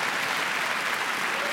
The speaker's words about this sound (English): Thank you. Thank you for a hand clap. That's half-hearted.